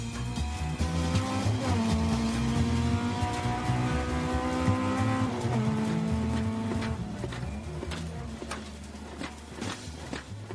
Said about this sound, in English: He's travelling faster, taking a bit more chance with the car.